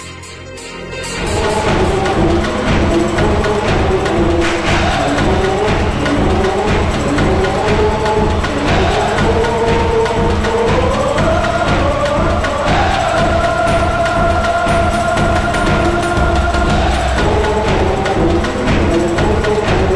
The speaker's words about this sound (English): And you will understand why they sound great. You will understand. Take a listen to this and then tell me on Discord, does this crowd chanting sound familiar?